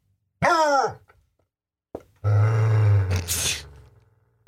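A dog, Walter, growls at the new puppy Opie: a brief, sharp yelping sound first, then a long, deep, rumbling growl that rises into a harsh snarl before trailing off. No one speaks.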